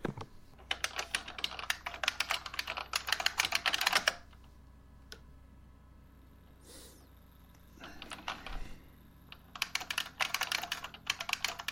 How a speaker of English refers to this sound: What am I doing? I'm just typing your paper for you.